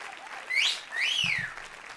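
A burst of crowd applause greeting a guest introduced on a show, a steady hiss of clapping with two swooping whistles rising and falling over it, plus a pair of soft low thumps near the end.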